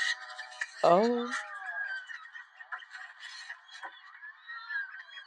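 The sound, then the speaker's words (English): A loud, harsh bird call from a played video recording, with a downward-sliding, raspy tone, rings out once near the start, then gives way to a steady buzzy background with faint murmuring sounds. “That's a bird? Yes.”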